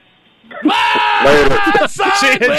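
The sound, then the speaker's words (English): A loud, sustained human scream erupts after a quiet start, rising and wavering in pitch with brief breaks, strained. “Do the scream.”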